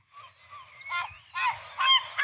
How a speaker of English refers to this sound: So I now have an audio clip to play of seagulls. Mm-hmm. And you tell me if you think it's seagulls having intercourse or if it's just seagulls on the beach having a good time.